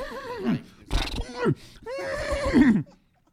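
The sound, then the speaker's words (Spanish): A person imitates a horse's neigh with their voice, a loud whinnying cry in several wavering bursts, rising and falling with breathy, nasal tones before cutting off into silence. “I do a great horse, bro.”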